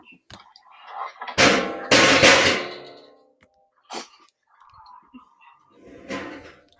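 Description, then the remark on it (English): A steel chair, kicked in a basement, scrapes loudly across the concrete floor in a harsh, grinding burst lasting about a second, followed by a few quieter knocks and shorter scrapes. “I have a steel chair and a concrete floor in my basement, so I kicked the chair so that it scooted across the floor.”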